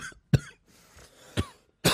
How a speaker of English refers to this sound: I love coughing right into the mic. You just got to get there, all my mouth noise.